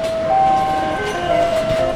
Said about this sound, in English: A modern car plant, by the way, sounds a lot like a casino. The automated gear plays little songs to let you know that it's running. Driverless robot carts glide up and down the aisles like R2-D2, delivering doors and other parts.